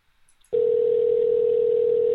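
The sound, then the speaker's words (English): After a brief quiet moment, a loud, steady telephone ringing tone of a connected call that goes unanswered starts abruptly and holds at one even pitch without a break until the end. “At least it's connected. It just isn't answering.”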